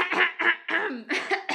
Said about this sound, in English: Let me clear my throat because I ate mac and cheese.